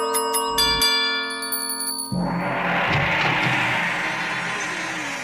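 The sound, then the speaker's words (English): A doorbell at a big door of a big green city chimes with a few ringing, sustained bell tones over about two seconds, then gives way to a loud, steady wash of rushing, crackling noise. “Who rang the doorbell?”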